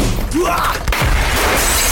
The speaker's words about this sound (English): Jesse smashed the door in. Glass shattered over us.